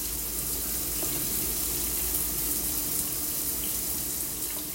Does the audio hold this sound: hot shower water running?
yes